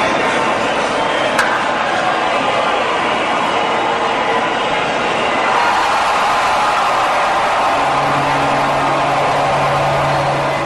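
Piped-in crowd noise fills the whole stretch in a steady, dense roar, with one sharp, brief crack of the bat near the start cutting through it, on Kelenic's second home run in a Seattle Mariners game stream.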